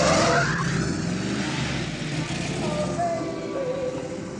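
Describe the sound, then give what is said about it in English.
Loud car engines roar continuously as cars race in a test run from one traffic light to the next, tires squealing and skidding across the pavement, with a steady rumbling drone throughout. “and they do sort of like a test run from light to light.”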